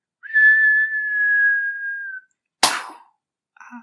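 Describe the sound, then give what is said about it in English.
A person imitates a firework, doing a 'firework clap' with fists and knuckles together and thumbs up: a long, steady whistle that slowly drops in pitch for about two seconds, then a sharp clap-like bang after a brief pause, followed by a faint trailing sound. “My favorite one is the firework clap, and you get your knuckles and you have your thumbs up, your knuckles together, your fists together, and you light it and you go.”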